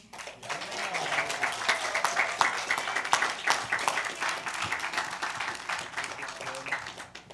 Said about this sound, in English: You guys did an awesome job this week. Let's give them one last round of applause.